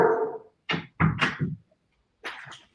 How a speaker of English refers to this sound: Sorry, guys. They're totally fine. I love those dogs. Man, three German Shepherds barking.